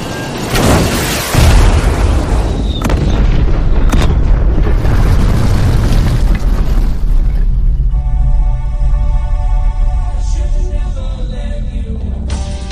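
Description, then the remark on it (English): A massive explosion as a city consumed by an alien virus is blown up erupts in a broad, roaring blast, then rolls into a long, heavy low rumble, with a steady droning tone emerging over the fading roar toward the end. “They're gonna blow up the city.”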